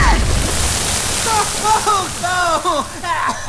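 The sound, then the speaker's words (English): A steady, loud rush of water spraying from a broken drain pipe hisses throughout, with voices talking and exclaiming over the constant splashing. “Why would you break the drain pipe like that? Oh, water's spraying everywhere!”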